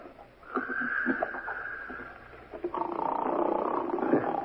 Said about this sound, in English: Guy's snoring up a storm at 9.